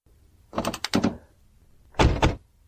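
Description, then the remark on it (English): A door is worked open as two people climb out with their hands up: a quick run of clicks and rattles from the latch, a pause, then a second heavier clunk as it swings or settles. No one speaks. “Now, both of you, get your hands up and climb out. No, not that door. This one.”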